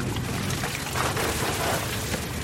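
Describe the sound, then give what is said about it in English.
The first catch of the day spills from the cod end of a net, drawn to the side of a boat, onto the boat's deck in a steady rush of pouring water and wet splashing that holds for a couple of seconds, with no voices. “The net is drawn to the side of the boat, and the first catch of the day comes on board.”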